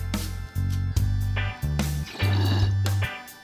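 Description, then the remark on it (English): Water bubbling in a freshly cleaned bong filled with fresh water, used to smoke the indigos cultivar: a deep, rumbling gurgle in several back-to-back bursts, each a low throaty churn with hissy air on top, fairly loud with no voices. “I just cleaned out my wife cleaned out my bong, thanks honey, and put fresh water in it, and I've already gunked it up with the indigos, but like the flavor on this is great with the fresh water.”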